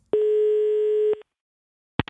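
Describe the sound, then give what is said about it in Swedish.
A single steady telephone ringback tone buzzes for about a second, clear, then falls silent before a short click, as if the line is picked up, as a call is placed to a person. “Och då ringer jag till den här personen.”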